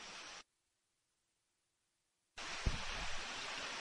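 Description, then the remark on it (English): Raindrops falling in Kaplan, Louisiana, as a steady, dense hiss that cuts out completely for about two seconds, then returns just as loud, with one brief low thump soon after it resumes. No voices. “All right, live from Kaplan, Louisiana, where you're hearing raindrops falling.”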